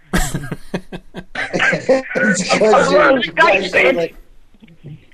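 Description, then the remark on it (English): Voices and laughter on a Skype call come through with a smeared, doubled echo, as listeners' stream audio feeds back on itself a moment late, then trail off into near silence. “Why are you all echoey?”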